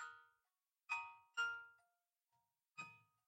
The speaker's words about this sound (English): That was Jenna's alarm clock.